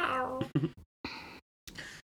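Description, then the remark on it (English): A person imitates a cat meowing, voicing several short, nasal meows in a row with brief silences between them, fairly loud with no other sounds. “Meow. I look down. Meow. Get some Morag to do some Foley for that.”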